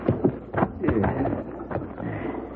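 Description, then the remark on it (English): Horse hooves clip-clop at an uneven walking pace as the horse is ridden, a few sharp thuds, with a low voice murmuring faintly underneath. “Sure gonna feel good to get off this horse.”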